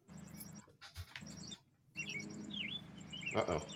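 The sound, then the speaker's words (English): Birds chirp steadily and fairly loudly outdoors, a quick string of high tweets with a few swooping calls, over a low background rumble with brief breaks. “We're picking up heavy birds.”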